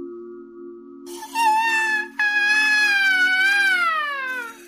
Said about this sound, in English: they heard a loud, wailing noise that sounded like the scream of an ambulance siren, or maybe some pipes in your guys' Airbnb.